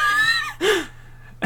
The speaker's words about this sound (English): You okay? He's just having a cough. That's fine. It's alright. He's alright now.